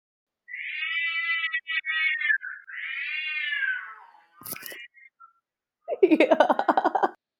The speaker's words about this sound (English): Is there a cat? Okay, let her join also.